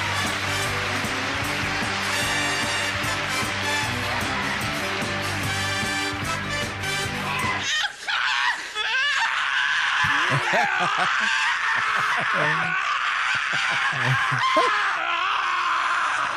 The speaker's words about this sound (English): By the way, that is 30 seconds of Bobcat screaming just clipped together. No jokes. Just all the clips of him screaming clipped together.